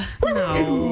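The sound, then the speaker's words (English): A person mimics a dog trying to talk, making one sustained, whiny, sing-song vocal sound that slides downward in pitch. It is fairly loud, lasting about a second with no other speech. “That's all these videos on YouTube and TikTok of all these dogs going”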